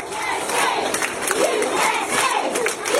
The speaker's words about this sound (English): The kids gathered in the halls of Prairieville Elementary School in Edmond, Oklahoma, chanting USA